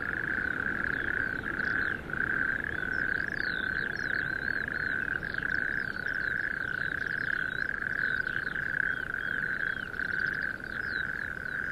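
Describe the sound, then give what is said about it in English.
A dense, continuous chorus of toads trilling together in sandhills, a steady high-pitched drone with overlapping calls, while faint chirps flicker above it for the whole stretch. “Maybe I'm becoming obsessed by singing toads and wicked golfers, a peculiar modern-day fairy story, perhaps an allegory for our times.”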